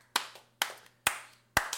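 Four sharp, bright hand claps at a slow, steady pace, each one snapping out cleanly and fading quickly, with no voices and only a faint low hum underneath.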